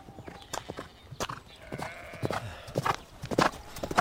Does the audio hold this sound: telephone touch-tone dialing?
no